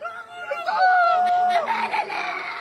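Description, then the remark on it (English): A voice lets out a long, high anguished scream over a noisy, chaotic background of other agitated voices, followed by further distressed cries: survivors of a blast at the Shifa hospital complex in Gaza, dazed and searching for loved ones among the dead and injured. “The haunting screams of those who survived this blast, dazed, confused, searching for loved ones amongst the dead and injured.”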